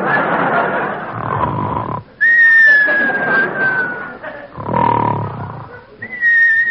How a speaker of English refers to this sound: Well, here we go again. Now come the whistles.